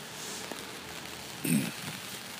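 A steady, soft hiss of rain falling outside in Vancouver, British Columbia, fairly faint and continuous, with one brief louder patter or splash about midway through.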